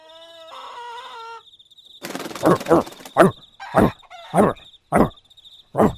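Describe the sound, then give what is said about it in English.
Chickens just out of their coop cluck in a run of short, loud, sharp bursts, after an opening stretch of higher tonal calling, with a faint steady high whine running underneath. “Oh, look, now the chickens are out of the coop, man.”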